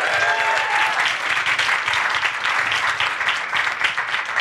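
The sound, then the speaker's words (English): A crowd applauds steadily at the Sci Fight Science Comedy Debate, clapping for the venue Science Space. Many hands clap in a dense, continuous wash of noise at a fairly loud, even level for the whole few seconds, with a brief whistle-like tone near the start. “Huge round of applause for Science Space for having us tonight.”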